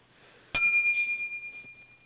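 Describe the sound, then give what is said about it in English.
A single downloaded bell sound effect is struck once, giving a bright ding with a high, steady tone that rings on and slowly fades over about a second and a half. No one speaks. “We need a bell to ring every time he says it.”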